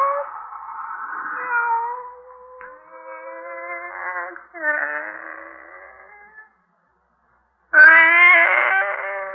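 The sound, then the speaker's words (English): A pet cat named Kitty yowls in long, drawn-out wails, several sustained moaning cries in a row, then a brief pause before one more loud, harsh caterwaul bursts in. “It's you, Kitty. Barbara's pet.”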